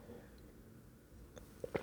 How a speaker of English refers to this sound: I'm having a throat thing. In fact, I'm going to have a sip of water.